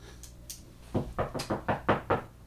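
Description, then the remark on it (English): A quick, steady series of about seven firm knocks on a door, with no one talking; a couple of faint taps come just before. “are we not going to answer the door?”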